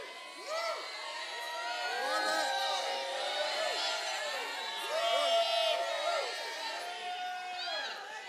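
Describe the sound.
A large crowd shouts and cheers together for several seconds, many overlapping high, excited voices rising and falling in a continuous loud roar with scattered whoops.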